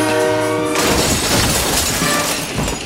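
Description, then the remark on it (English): A loud train horn blares for under a second before a violent crash of shattering, grinding noise swallows it as the train hits a crashed plane on the tracks; the crash continues to the end, with no voices. “They pulled him out just before the train hit the plane.”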